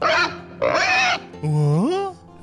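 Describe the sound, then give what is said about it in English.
A pig grunts and oinks in three loud bursts, harsh and nasal, the last one swooping upward into a drawn-out squeal. “Here at Shame Swine, we send our sickest, most disgusting pig around to your door so you can pretend that you caught COVID-19 from a pig.”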